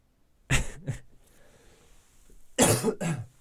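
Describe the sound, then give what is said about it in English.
Two pairs of harsh coughs, one pair early and another about two seconds later, with quiet breathing in between and no talking. “And I'm still coughing.”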